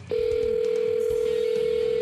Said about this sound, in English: Once when NASA got that rover, the rover on Mars, and it was a big story, I rang NASA, and they answered the phone, and they spoke to me.